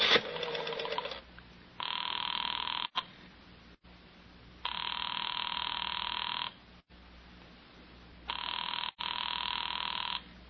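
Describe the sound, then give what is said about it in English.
A telephone rings in a steady cadence of long, buzzy bursts separated by short pauses, three rings in all, thin and even in tone, with no voices. “I thought you weren't going to answer.”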